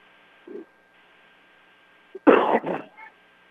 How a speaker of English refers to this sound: From time to time, I've had the sniffles for the past week. A little bit of a cough.